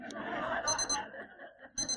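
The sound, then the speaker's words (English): An alarm clock beeps loudly in short repeated bursts, with a brief pause before the beeping resumes near the end; a faint chuckle or murmur sits underneath. “I guess I pressed the right one, but it might just be the snooze button.”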